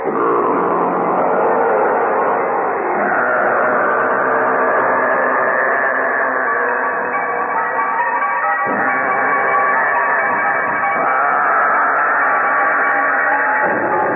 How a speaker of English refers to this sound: Hear that roar? Well, what that was, he had set up on the back of the stage, on a stand, a Pratt and Whitney aircraft engine with the propeller aimed out at the audience.